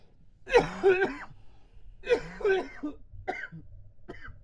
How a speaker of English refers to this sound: That was me making myself cough.